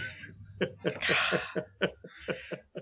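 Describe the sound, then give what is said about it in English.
A run of short, rhythmic coughs, about eight quick bursts, with a harsher, breathier burst in the middle, and no clear speech. “There's more fidgets than coughs.”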